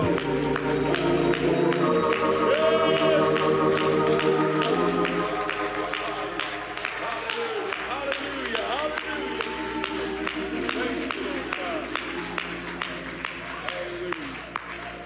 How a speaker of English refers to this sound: So why don't you do that all over this building? If you're watching online, why don't you clap your hands and shout unto God with the voice?